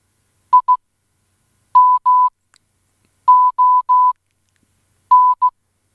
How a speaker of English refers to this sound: But speaking of which, right, I've found out how to do your name in Morse code. Oh, so thank you. Let's give that a play. And this is Simon in Morse code.